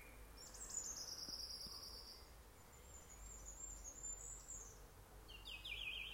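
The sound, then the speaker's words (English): Delicate, high-pitched bird chirping drifts through a quiet outdoor scene among trees and stinging nettles, with a few varied calls from one particular hidden bird near the end, all faint and set against a low, steady background rumble. “But you can hear some quite delicate chirping on one side, and then some varied calls from one particular bird, which I can't see because it's hiding.”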